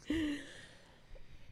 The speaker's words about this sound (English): Sorry, everybody. I'm just coughing up a lung over here. Yeah, I just a little sick.